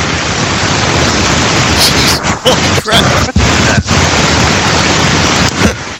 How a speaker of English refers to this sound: And today, our game is being recorded live from the beaches of Waikiki, and the surf you hear in the background is not Skype static.